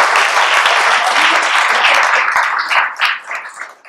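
A crowd applauds steadily, a dense wash of many hands clapping at once, loud throughout and starting to thin into scattered claps near the end, as a culturally responsive teacher leader for Milwaukee Public Schools is introduced.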